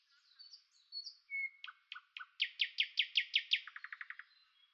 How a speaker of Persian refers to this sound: حالا صبحه، آسمان آبی فیروزه‌ایه. تو هوای خنک بلوری و اطرافشان پرنده‌ها گرم کارند و یک سینه صدا رو مثل یه مش مروارید که از توی دستمال ابریشمی رنگینی بیرون بریزه رها میکنن. به هوا نوک میزنن و در اون میدمند و باز اون رو فرو میدند و تو گلو میگردونند